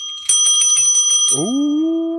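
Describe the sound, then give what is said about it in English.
A bicycle bell rings loud in a quick rapid trill of about eight dings, then a lower sustained ringing tone lingers to the end. No one speaks. “Do you have the bell? I got it right here. I got my ding.”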